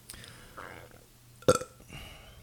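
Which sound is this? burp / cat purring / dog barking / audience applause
burp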